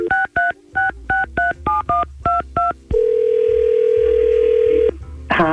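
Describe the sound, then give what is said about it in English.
A quick run of about ten telephone keypad dialing tones, short evenly spaced beeps, followed by a steady ringback tone for two seconds, then a voice picks up at the end. “Well, we got …'s number. Let's give her a call.”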